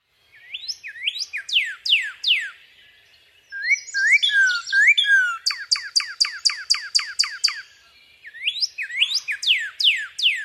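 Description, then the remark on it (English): A northern cardinal sings a quick song of rapid, repeated slurred whistles, swooping down in fast series with brief pauses between phrases, clear with no other sounds. “Here's another sort of quicker version of their song.”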